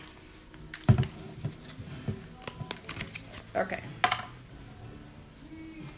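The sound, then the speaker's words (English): Fairly new, stiff playing cards being shuffled by hand, with irregular papery taps, flicks and short rustling bursts over several seconds. A voice speaks briefly in between. “So we're going to try to shuffle them this way.”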